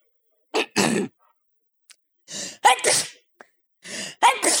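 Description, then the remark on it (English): A person voices three staged sneezes, each a sharp breathy intake followed by a loud, noisy burst, spaced about a second apart, clear with silence between. “I can do a really good fake sneeze.”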